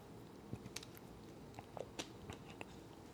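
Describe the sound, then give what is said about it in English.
Someone takes a sip of water in a garage, making a series of small wet clicks, slurps and swallowing sounds over a few seconds with no talking. “And you're also about to hear me take a sip of water, because even though the AC in the house is fixed, this garage is sweaty.”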